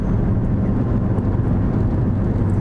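A steady, low rumbling drone of road and engine noise fills the cabin of a moving car during a car ride, constant in loudness with a faint hiss above and no voices.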